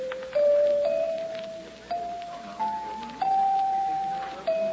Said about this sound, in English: Wonder how much these chimes are.